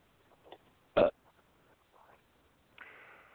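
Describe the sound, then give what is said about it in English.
A short, loud burp bursts out, followed moments later by a longer, rougher belch that trails off at the end. Nobody speaks. “When ready, this belch is for you.”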